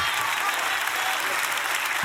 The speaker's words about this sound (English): Get up and clap.